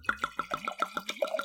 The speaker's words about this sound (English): Anyways, I'm pouring my wine. Okay, pour your wine.